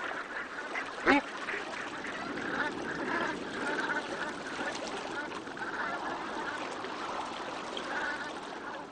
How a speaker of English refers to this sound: Suddenly, I'm seeing and hearing these geese every time I walk down Sandymount Strand. I'm looking for them, really.